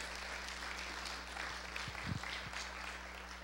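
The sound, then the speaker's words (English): A crowd gives the Lord a hand clap in the morning with steady, dense hand clapping, a continuous patter of many hands over a low background hum, a few louder individual claps standing out near the end. “Give the Lord a great big hand clap this morning.”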